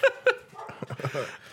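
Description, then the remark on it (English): Two quick, sharp barks from excited dogs in rapid succession, loud, followed by softer muffled sounds that could be faint voices in the background. “The dogs are flipping out.”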